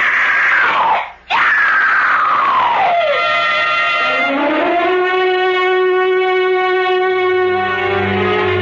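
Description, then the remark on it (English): A woman's long, loud scream of terror, breaking off briefly before a shrill cry that slides down in pitch and then swells into a sustained, strained wail with a strong harmonic edge. “Consumed by revenge, Arno Montresor bears the numbed body of Isabella away to the catacombs below as the terror in her heart pours from her throat.”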